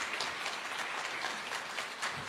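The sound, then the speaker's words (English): A church audience claps steadily for its senior ministers as they come up to be honoured during a service, a dense, continuous patter of many hands holding an even level throughout with no voices breaking through. “Please give them a round of applause as they come.”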